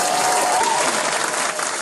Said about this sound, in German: In all die gespannten Gesichter schauen. Die Aufmerksamkeit vom Publikum spüren. Applaus.